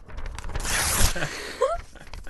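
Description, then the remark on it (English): A stack of scrap paper, the day's mail, rustles and crinkles for about a second as it is handled, a dry scraping shuffle that fades into light handling noises and a brief squeak. “You just keep a stack of scrap paper next to you?”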